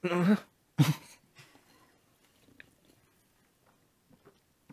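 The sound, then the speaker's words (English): Wet sipping and gulping as several people take sips of drinks: two loud slurping bursts at the start, followed by quiet swallows and soft mouth clicks scattered through an otherwise hushed stretch. “I really hope it's enjoyable for other people listening when we're just all taking sips and can hear our gulps and everything.”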